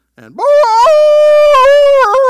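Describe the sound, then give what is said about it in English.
A single voice mimics a wolf howl, rising from a low swoop into a long, sustained, harmonic wail with small wavering breaks, loud, lasting about two seconds. “And then another wolf and another wolf.”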